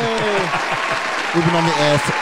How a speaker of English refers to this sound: Please hold the applause till the end.